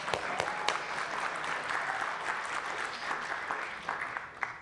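An audience applauds, a dense, steady wash of clapping with a few sharp individual claps standing out, holding at an even level for about five seconds with no voices.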